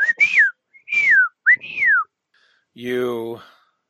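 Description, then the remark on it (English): A person whistles three short sliding notes in quick succession, each swooping up and then down, as a signal rather than an animal-like whistle, followed by a brief voiced call. “whistle at it, but like distinctly not like an animal whistle, just like a signal like, hey, I'm here.”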